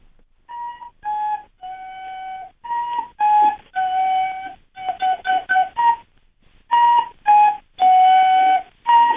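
A recorder plays Hot Cross Buns alone, a simple, slightly wobbly tune: slow descending three-note phrases, then a run of short, quick repeated notes, then the descending phrase again.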